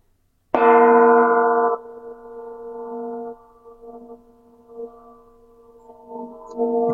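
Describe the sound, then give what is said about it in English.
A bronze sound plate is struck once, hard, giving a loud clangorous hit that rings on in a deep, sustained metallic tone, slowly wavering and shimmering as it fades. “Yeah, those are paste sound plates.”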